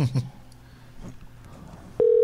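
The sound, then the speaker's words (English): A telephone ringback tone on an outgoing call to Scott Ian starts abruptly near the end, a steady, loud electronic tone, after a quiet stretch with a few brief low beeps and faint line noise. “Is it ringing?”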